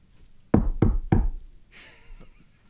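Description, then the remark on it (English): Three firm, evenly spaced knocks on a bunker door, followed by a faint creak or rustle as the knocking stops. “The zombies don't knock, do they?”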